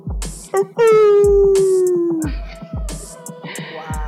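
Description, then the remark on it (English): A person imitates a dog howling: one loud, drawn-out howl that slowly slides downward in pitch, over a steady thumping beat in the background. “I mean, my actual dog ain't in here, you know, baying at the moon, but okay.”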